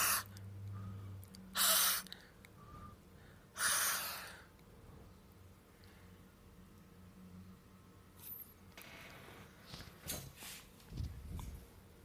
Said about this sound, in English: How come when you have your mouth wide open and breathe, it's hot air? Breathing out? But when you have your mouth almost closed and breathe, it's cold air. Like that.